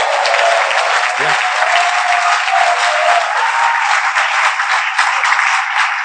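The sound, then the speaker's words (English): An audience claps for the Lord during a sermon, loud and steady, a dense, continuous wash of many hands that holds at full strength for the whole stretch, with faint voices murmuring underneath. “Give the Lord a clap if you like what I'm saying.”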